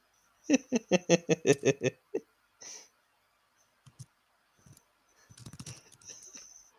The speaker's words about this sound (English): spam typing.